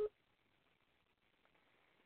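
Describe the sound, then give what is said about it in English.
A single short, steady electronic beep from a phone line at the very start, then only faint hiss as the call drops to near silence. “That just cut me off. Usually there's two beeps.”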